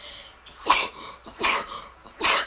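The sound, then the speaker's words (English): Three sharp, explosive sneezes in quick succession, each a sudden burst of breath spaced under a second apart, with no talking in between. “Bless you.”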